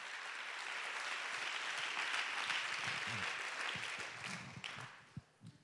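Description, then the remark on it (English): An audience claps their hands together to praise God, a dense, steady wash of applause that holds for several seconds, then thins out and fades as the last scattered claps trail off. “Well, why don't we just all clap our hands and give God the praise for an opportunity to make a difference.”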